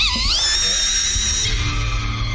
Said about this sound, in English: Man, ended the scene with a scream.